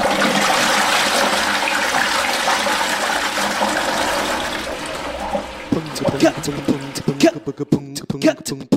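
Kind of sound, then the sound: household object, toilet flushing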